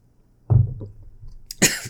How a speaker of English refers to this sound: Oh, God. You make me choke on my God. My coffee. Where's my cough button?